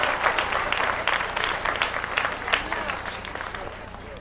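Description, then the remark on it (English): A church audience claps steadily, dense overlapping applause at a moderate, even level from start to finish with no talking over it. “You should be clapping because you're coming out of it.”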